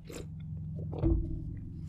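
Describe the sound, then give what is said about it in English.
Someone drinking water: soft wet mouth sounds and a few quiet sips, then a fuller gulp near the middle, with a low steady hum underneath and no talking. “Just need a drink of water.”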